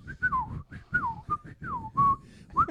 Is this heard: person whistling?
yes